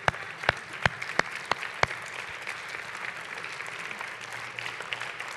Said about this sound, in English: Well, won't you stand, give the Lord a clap offering.